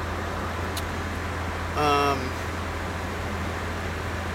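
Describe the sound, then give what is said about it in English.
Steady, constant road rumble and engine drone inside the cabin of a blue mid-1990s Toyota pickup truck, with a deep low hum throughout and a brief, tonal vocal-like sound about halfway through. “I am in my vehicle, which is a blue Toyota truck, mid-90s.”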